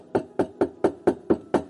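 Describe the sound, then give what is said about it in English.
Seven quick, evenly spaced knocks on a door, each a solid, hollow thud with a woody ring, in a steady rhythm with no voices. “He says, "Behold, I'm standing at the door of your heart and I'm knocking."”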